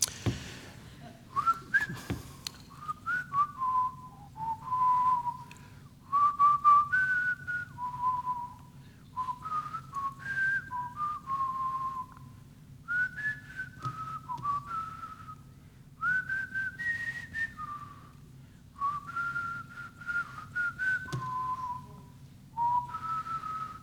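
A person whistles a slow, hymn-like melody in clear sustained tones, phrase after phrase with short pauses, steady over a low background hum.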